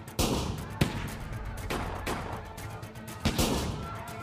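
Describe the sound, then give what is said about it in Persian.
A burst of gunfire as police chief Brigadier Safari, firing his sidearm Colt, and others shoot at Naser Fakhrarai: several sharp, loud shots crack out at irregular intervals over a rumbling, noisy background, with no talking. “اما دیر شده بود و سیل گلوله به سمت ناصر سرازیر شده بود.”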